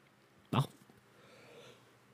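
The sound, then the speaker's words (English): A person yawns: a sudden sharp intake of air, then a softer drawn-out breathy exhale trailing off over about a second, fairly quiet overall. “Why do you yawn, huh? Why do you fucking yawn?”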